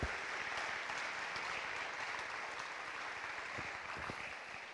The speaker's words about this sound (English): Who served in one of our armed forces in this room? Could you just, why don't you stand, because you deserve to be honored. We applaud you. Thank you. Thank you.